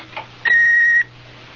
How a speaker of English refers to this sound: I'm not here at the moment, so please leave a message and phone number, and I'll get back to you as soon as I can. Don't forget to wait for the beep.